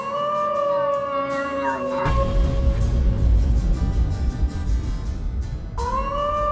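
Animal cries, including a dog's, of howling and meowing strung into a song-like melody as a cover of a song, sustained pitched wails broken by a harsh, noisy burst in the middle before the wailing tune returns, loud, with no talking.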